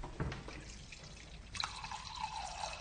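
Water pours into a wine glass, filling it to about three-quarters, in a steady, faint trickle, its ringing tone gradually rising in pitch as the glass fills. No one speaks.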